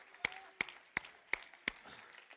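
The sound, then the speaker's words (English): A church audience claps hands in unison: five sharp, evenly spaced claps in a steady rhythm, with only faint murmuring between them. “Clap your hands.”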